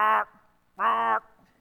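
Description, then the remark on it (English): A person imitates a raven with two loud, harsh squawks. The first is short and the second longer, separated by a brief pause, with no other sounds. “And I imagine a raven doing what ravens often do, squawking, annoyingly so, like loud.”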